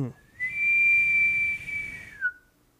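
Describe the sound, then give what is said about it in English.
A person imitates an elk bugle with a single high, sustained whistle that glides up, holds a steady pitch for over a second, then slides down at the end. No talking accompanies it. “You sound like maybe an elk bugle way off in the distance.”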